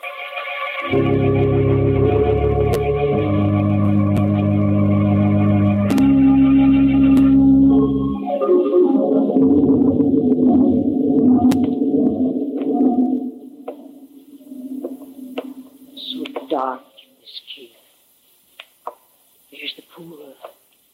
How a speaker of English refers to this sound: Bubbling pool.